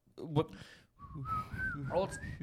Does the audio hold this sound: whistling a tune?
yes